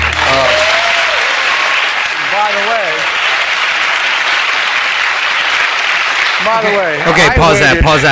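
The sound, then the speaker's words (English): Steady, dense canned (prerecorded) applause fills the whole clip at high volume, a continuous wash of clapping with brief voices cutting through near the start and end. “All those claps and everything you hear in the background. It's all canned.”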